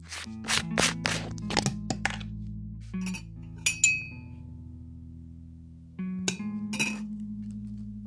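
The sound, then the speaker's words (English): A metal spoon clinks repeatedly against a ceramic mug while mixing sugar into instant coffee, with bright, irregular taps in quick bursts, a short pause, then more clinking over a steady low hum. “Mix in sugar.”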